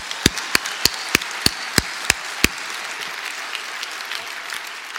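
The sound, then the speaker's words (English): An audience at an event claps for the many people who raised hands as retiring in the next 10 years, beginning with about eight loud, evenly spaced sharp claps, then settling into a softer, continuous patter of scattered applause. “All right, let's first clap it up, because that's the most hands I've ever seen.”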